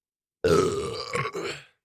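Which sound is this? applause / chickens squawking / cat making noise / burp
burp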